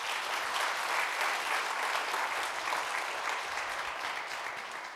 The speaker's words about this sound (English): How happy and blessed are we that all of the voices of the Orangewood Kids Choir is here. Amen. Amen. Can we just give them one more round of applause if you're comfortable with that?